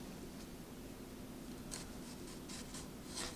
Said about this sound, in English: So yeah, paper thin, easily cuts through that tomato, no problem whatsoever.